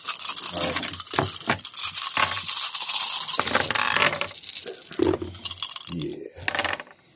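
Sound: dice being rolled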